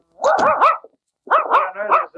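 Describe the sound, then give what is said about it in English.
A puppy named Mabel barks in two quick flurries of high, yappy barks, several short yelps in each burst with a brief pause between them, fairly loud and with no talking. “It is an odd-looking pup.”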